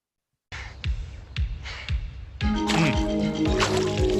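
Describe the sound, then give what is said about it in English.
Water splashes in a run of repeated bursts, roughly every half second, growing denser and busier partway through with a steady churning wash underneath. “I'll explain that splashing in a minute.”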